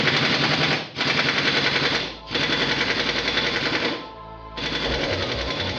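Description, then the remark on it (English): A minigun, fired by the big guy in an advert for Discount Mercenary Warehouse, roars in long, continuous bursts, a dense buzzing rattle of rapid-fire shots with brief pauses between volleys and a mechanical whir as it spins down near the end. “You want the big guy with minigun to shoot things?”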